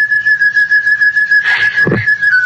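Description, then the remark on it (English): Someone whistles a slow, sad tune, holding a long, clear, steady note that dips slightly at the end, with a brief soft rustle partway through and no talking. “Ever since I made my report, I've been hearing that song in my head. Like somebody whistling it.”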